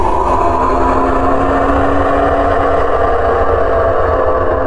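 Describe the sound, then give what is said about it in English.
The roar of a giant winged beast, as long as the sun is wide, racing out of the sun, rendered as a deep, rumbling drone with a steady buzzing tone, loud and unbroken for nearly five seconds, with no voices present. “It lets out a roar.”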